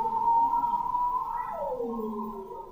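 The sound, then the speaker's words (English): A bearded seal sings underwater: a clear, warbling tone that holds steady, then glides smoothly downward in a long descending sweep, heard alone with no voices. “And then there's the bearded seals who are singing almost like sort of like pop singers, you know, they're like, it's very flighty and full of different ups and downs, and it's really quick.”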